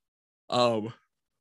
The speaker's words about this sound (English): Well, a third yawn.